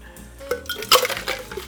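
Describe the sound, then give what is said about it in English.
Ice rattles inside a cocktail shaker worked by a bartender with a double shaking action, a series of sharp, irregular clinks and knocks that peak midway, with no talking over it. “You got the double shaking action. That's the sign of a true professional bartender.”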